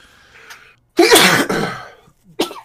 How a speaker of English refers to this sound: Bless you. He's like, I'm back. Let me just sneeze and cough on the mic.